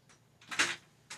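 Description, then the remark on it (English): A door being unlocked: a few short metallic clicks and a louder rattling clunk in the middle, fairly quiet, with no voices. “unlock the door.”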